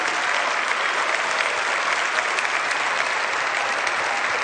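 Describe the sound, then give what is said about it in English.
A church audience applauds the church staff steadily, a dense, even wash of many hands clapping at a constant loud level for several seconds, with no voices breaking through. “Would you all applaud the great work that they've done?”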